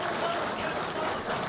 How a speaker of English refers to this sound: Who thinks, by a show of applause, that Thanos is innocent of his crimes?